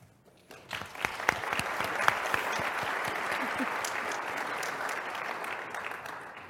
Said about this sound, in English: If we want, can we give another round of applause for our panelists for being here today?